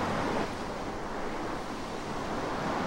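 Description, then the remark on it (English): Steady rushing ocean surf fills the scene, a broad continuous wash of waves on the shore with a slightly stronger swell at the start. Moderately loud, no voices. “I brought you here so you'd look out at the water and feel comforted. Comforted that your friends were looking out at the same ocean.”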